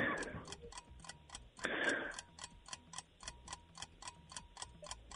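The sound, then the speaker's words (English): A quiz countdown timer ticks steadily, about four crisp, high clicks per second for the whole stretch, with two brief bursts of noise near the start but no clear talk. “Timer went out.”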